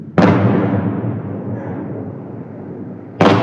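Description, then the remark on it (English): A loud, heavy explosion booms and rolls out in a long rumbling decay, then a second sharp blast hits at the very end, outdoors with no voices: Shahed explosive drones being shot down by air defense systems over Kyiv, Ukraine, before daylight during a Russian attack. “Before daylight, the buzzing of drones can be heard above the city, followed by loud explosions as they were taken down by air defense systems.”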